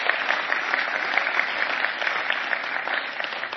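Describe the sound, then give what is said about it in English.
An audience applauds a woman steadily, a dense wash of many hands clapping at once that stays loud and even throughout without fading. “You can clap for her.”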